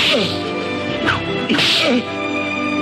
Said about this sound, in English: Stake him out and whip the sass out of him.